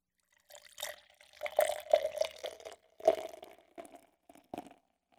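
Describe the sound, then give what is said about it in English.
Bourbon barrel-aged Imperial Dark Ale glugs and splashes into a glass for several seconds, with uneven gurgling pulses that taper off into a few trickles at the end. No voices. “Alrighty, we got the fucking bomb poured out, and it's about time to get some smelling notes off of this motherfucker.”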